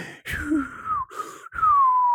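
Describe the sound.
A voice imitates the robot VX5 sleeping, its whistling motors in sleep mode, with breathy, gasping inhales alternating with two long, gently falling whistle-like tones. It is moderately loud and has no words.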